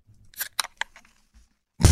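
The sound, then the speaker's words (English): A few sharp metallic clicks and short hissy snaps as a beer can is cracked open, used as a sound effect before an ad break, then a brief pause before a sudden loud burst of fizzing hiss cuts in at the end. “Was that a beer opening? It's a beer opening.”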